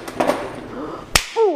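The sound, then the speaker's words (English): A loud, sharp punch sound effect cracks out after a couple of softer earlier hits, for Moses punching an Egyptian, followed immediately by a short pitched vocal cry. “And he punches the Egyptian.”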